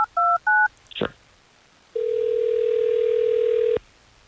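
A few quick touch-tone dialing beeps and a click, then a single long, steady ring tone as a call is placed from radio station Hot 101.5 in Tampa Bay, heard clearly with no talking.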